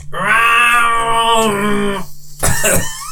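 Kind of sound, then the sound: vocal imitation, person imitating a cat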